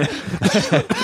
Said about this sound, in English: You okay there? Yeah. Coughing. Okay? You're probably coughing because there's not enough carbon dioxide reducing trees left in the world.